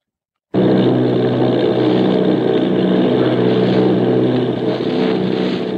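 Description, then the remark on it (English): Loud, steady drone of the engines of Army bombing plane V-843 and a formation of eight bombers off Bayonne, New Jersey begins abruptly and holds at an even, throbbing roar with no voices, continuous throughout. “Army bombing plane V-843 off Bayonne, New Jersey.”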